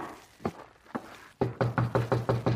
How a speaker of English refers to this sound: Come on, Margo. Up the stairs. We better knock.